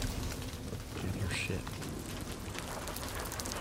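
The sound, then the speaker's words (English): Steady rain pours down in a video game trailer in a dense, even hiss that fills the whole stretch without pause, with a low murmuring rumble running underneath. “Sometimes it would be better to live with rain. Rain. And darkness.”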